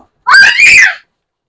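A person lets out a loud, high-pitched shout, close up, in two quick connected bursts lasting under a second, with silence before and after.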